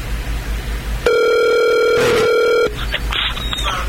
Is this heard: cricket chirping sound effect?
no